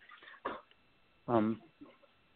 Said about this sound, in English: Sorry, our dogs are playing.